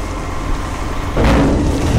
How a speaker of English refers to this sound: It looks like a garbage truck and sounds like a garbage truck, but the pumpkin shells, rotting apples, and coffee grinds this truck is unloading will actually become something good. Compost.